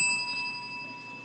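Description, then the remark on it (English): A single bell strike rings out clearly, its bright metallic tone sustaining and slowly fading away, with no talking over it. “I hit the bell because I honestly forgot.”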